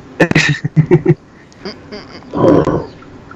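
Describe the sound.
A person makes a short growling roar with their voice, fairly loud, after a quick run of clipped vocal bursts. It is a human imitation rather than a real animal.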